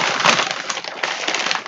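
Paper bag crinkling and rustling steadily for under two seconds, a loud, dense crackle of stiff paper with small bursts and no voices.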